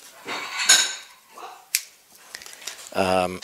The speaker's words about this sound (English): Lady of the house brings some plates.